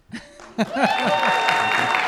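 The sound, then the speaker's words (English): An audience breaks into steady applause during the introduction of a medical professor, after a brief vocal sound, the dense clapping rising quickly and holding loud and even to the end. “And then we pause for applause.”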